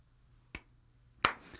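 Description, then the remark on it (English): A woman, not standing, gives a slow clap: two slow, sharp claps roughly three-quarters of a second apart, the second louder and brighter than the first, over a faint low hum with no talking. “Just no, just slow clapping. The slow clap.”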